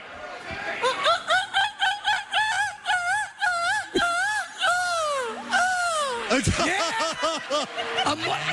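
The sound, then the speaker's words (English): A man's voice imitates a seagull, letting out a long, loud run of rapid, wavering squawks and rising-falling cries, nearly continuous with no other talk. “Your best seagull, please.”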